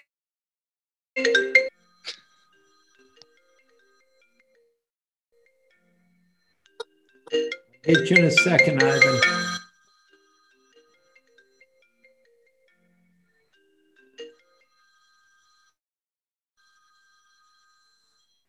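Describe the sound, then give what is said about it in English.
A phone ringtone sounds in short bursts: a brief ring, a couple of isolated chirps, then a longer loud ringing stretch lasting about two seconds, followed by a faint final ring. A voice briefly speaks. “Get your phone.”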